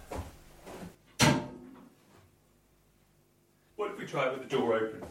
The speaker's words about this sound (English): Now, before I continue, I'm just going to give this fire a stoke because I'm about to catch pneumonia.